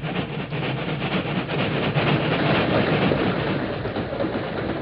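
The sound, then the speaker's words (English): A long freight train rumbles steadily past, a dense, continuous roar of wheels and rattling cars filling the whole stretch with no pause and no voices. “Wait here in this ravine till the train goes by, Tonto.”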